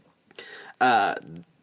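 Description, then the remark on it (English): A brief breathy sound, then a single loud, throaty burp lasting under half a second, with a rough voiced tone that trails off into a softer vocal murmur. “A burp just, like, snuck up on me.”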